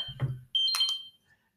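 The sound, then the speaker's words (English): A short electronic alert from a blood sugar monitor: a few bright, high-pitched chirping tones in quick succession, clear, following a brief low murmur. “There was always going to be, that's my blood sugar alarm.”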